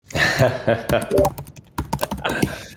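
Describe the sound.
Loud, rapid typing on a computer keyboard, a dense clatter of close keystrokes in quick bursts with brief pauses, while someone talks faintly underneath.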